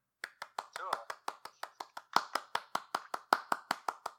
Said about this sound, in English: Cool. How's this clapping play in the podcast? Yeah. Let us know if you like that or not.